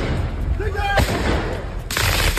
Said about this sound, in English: Protesters have set off fireworks in a Paris suburb overnight after a 17-year-old boy was shot dead by police.